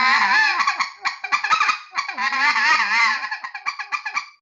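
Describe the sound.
A goose call blown to imitate feeding specklebelly geese: a continuous, buzzing chatter of low murmurs and quick, rapid clucks, fairly loud, running in bursts with brief gaps and no talking.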